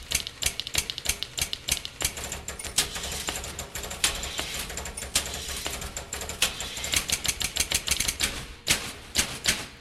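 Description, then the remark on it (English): Several typewriters, used as mechanical sound-making machines in an orchestra built for a banking advertisement, clack in a dense, rapid, uneven patter of sharp key strikes, layered over a low mechanical rumble, steady throughout with no voices. “And he had the idea to use all the typewriters, all mechanical sound-making machines.”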